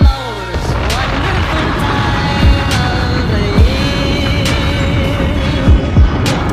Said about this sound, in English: Yo, yo, yo. Yo, the gunshot.